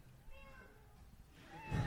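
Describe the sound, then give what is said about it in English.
A kitten meowing sound effect, played as a signal that a comic's time is up: a kitten mews faintly a couple of times in thin, high, wavering cries, followed by a slightly louder, fuller meow at the very end, heard quietly as if at low volume. “You know your time is up when you hear the sound of a kitten.”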